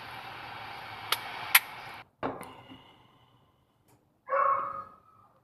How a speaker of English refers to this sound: This dog keeps crying. It's freaking me out.